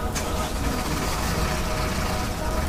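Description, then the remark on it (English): A truck engine rumbles steadily and fairly loud as someone steals the truck and drives it off, a dense, unbroken mechanical roar that holds at the same level throughout with no voices. “Someone was trying to steal their truck. I ran out to see it take off.”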